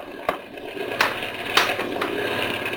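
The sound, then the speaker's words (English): A boat motor runs roughly and starts to die, its steady mechanical rumble broken by a few irregular sputtering pops and coughs, as if it is struggling to keep going. No one speaks. “Even boat motors can't take it. They start to die.”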